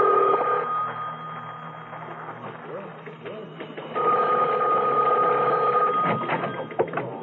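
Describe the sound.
A telephone rings in two bursts, a brief ring at the start and a longer, steady ring a few seconds later, over a low background murmur and faint voices.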